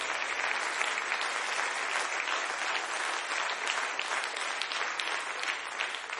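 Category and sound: crowd, audience clapping hands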